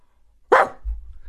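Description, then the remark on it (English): A hound lets out one loud, sharp bark, its harmonics spreading up the spectrum, followed by a low rumbling hum with no voices. “Goodness me, a hound, said Watson.”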